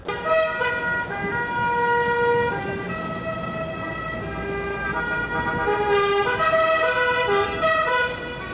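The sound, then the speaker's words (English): Several car horns blare together in a loud, steady, overlapping chorus, their pitches shifting over rumbling vehicle engines, as drivers and car club members pile into their cars and cruise in procession through Havana. No one talks. “Then, horns blaring, the drivers and club members pile into their cars and begin cruising in procession through Havana.”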